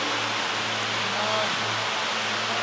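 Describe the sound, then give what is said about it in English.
A steady, dense hiss of heavy rain fills the scene, unbroken and fairly loud, like a downpour drumming with a faint low hum underneath. “It's raining heavily here, so we just take a song.”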